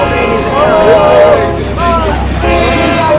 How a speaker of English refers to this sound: boy, you're gonna get hit by that train.